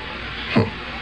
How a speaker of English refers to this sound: First, we place a small amount of the green powder into a test tube. Now, we hold the tube under the tap and see what effect is caused by water.